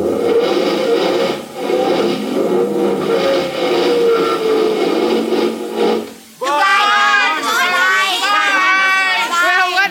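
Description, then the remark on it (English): A car engine labors with a strained, droning roar for several seconds because the brake is still on, its pitch wavering without the car pulling away; it then cuts off abruptly and voices take over. “I forgot to take the brake off.”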